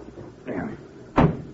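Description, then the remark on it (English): A soft shuffling rustle, then a single solid thump as a car door swings shut, with a brief low rumble trailing after the impact. “Hop in. Well, thanks. There's room for your bag, Nick. Come on, slide it in.”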